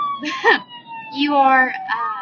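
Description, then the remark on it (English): An ambulance siren wails outside, its rising and falling tones fairly loud and steady across the moment, as if the vehicle is passing. “I know you guys can hear this ambulance.”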